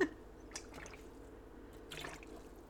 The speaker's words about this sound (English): ASMR of … drinking water